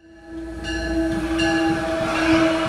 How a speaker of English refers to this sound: The sound overwhelms your ears as you stand on the platform. The steel wheels of a MARC train riding the steel tracks on the way to D.C., carrying commuters